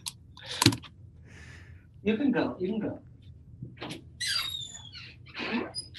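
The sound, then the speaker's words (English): A cat named Joan meows loudly several times, each call a drawn-out, high, wavering cry separated by short pauses, with a few clicks and faint rustling between them. “All right, Joan, you're going to have to leave because you're meowing really loud.”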